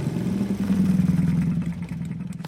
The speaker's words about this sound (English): Shortly after Grammy left, Little Red came along riding her scooter.